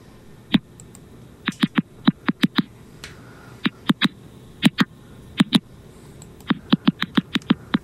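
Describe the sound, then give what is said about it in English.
Sharp, dry clicks pop out in irregular bursts, some in quick runs of three or four, others alone, against a faint hiss with no voices. Recorded clicks from a thirsty tomato plant. “And I actually have an example of what a plant that is calling out for help might sound like.”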